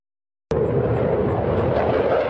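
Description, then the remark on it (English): After a brief silence, a loud jet roar cuts in abruptly and holds steady as a dense, rumbling wall of engine noise as an F-16V fighter jet carrying a payload takes off from a base in Jiayi, Taiwan. “A F-16V fighter jet takes off from a base in Jiayi with a payload.”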